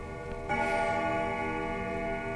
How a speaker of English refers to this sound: When the clock mysteriously strikes at midnight, it was very puzzling, very mystifying, as it had not worked since old Cyrus passed.